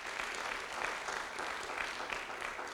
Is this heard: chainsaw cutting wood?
no